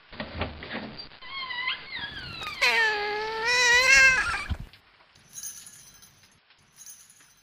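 A cat gives a long, drawn-out meow with rising and falling pitch, fairly loud, followed by a couple of seconds of quiet background noise with faint clinks.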